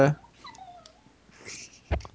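A dog whines in thin, high, wavering tones that slide up and down, fairly faint, bracketed by a brief louder noise at the start and a sharp burst near the end.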